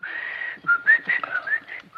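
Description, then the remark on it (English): A man whistles a short, wandering tune: one long held note, then a quick run of bright, sliding notes rising and falling, with no talking. “And that insipid whistling coming out of that insipid face.”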